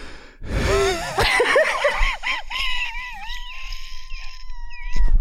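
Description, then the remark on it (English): A long, strained wheeze: high, whistling tones wobble and swoop up and down, then settle into a thin, steady squeal that trails on for several seconds with no talking. “The king of wheeze. The wheeze champion steps up to the podium.”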